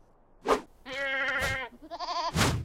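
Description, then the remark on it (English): A wild goat loose on Goat Mountain at a zoo bleats twice, a long quavering cry followed by a shorter wavering one, with sharp noisy bursts of sound before, between and after the calls. “I hear there's a goat making trouble up here.”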